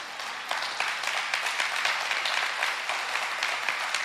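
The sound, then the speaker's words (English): An audience claps together, dozens of overlapping hand claps forming a dense, steady patter of applause that holds at an even loudness for about four seconds, with no voices over it. “So why does it take us so long for anybody to clap right now?”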